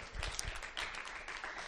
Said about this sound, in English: And I really want to thank each and every one of you. I think it's a good time to clap hands for yourself.